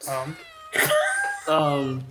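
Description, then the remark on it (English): A person imitates a cat, producing three drawn-out, whiny meows in quick succession, loud, with strong harmonic wavering like a real cat's cry. “Why is there a cat? Why is the cat out in the rain?”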